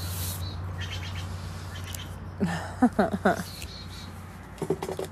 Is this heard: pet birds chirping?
yes